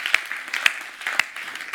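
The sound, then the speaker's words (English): An Icon Church audience claps along in praise in a steady rhythm, sharp louder claps landing about every half second above a continuous bright wash of many hands clapping. “And if it feels awkward to clap in Derby Connects, just do it.”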